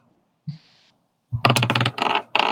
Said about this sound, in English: Okay. More floor dice.